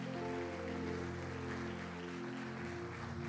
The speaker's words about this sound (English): Come on and give Jesus a hand clap of praise.